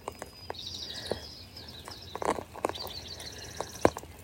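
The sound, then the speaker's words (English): A dawn chorus of birdsong, with overlapping high chirps and quick trills from several birds, punctuated by scattered soft tapping sounds. “Let's become part of the dawn chorus.”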